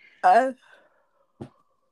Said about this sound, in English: … is yawning a lot lately. So if you hear any weird noises, it's just a yawn.